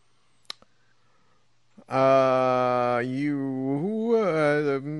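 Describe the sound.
A person's voice imitates a humpback whale call: one long, loud, drawn-out moaning tone with sliding dips in pitch, after a brief quiet lead-in with a faint click.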